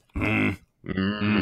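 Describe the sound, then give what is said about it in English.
Two low, rough vocal growls from a person, each about half a second, separated by a brief pause; gravelly and buzzing, somewhat snore-like, with no other speech. “I feel like tonight you've introduced a new sound, which I would call low growl.”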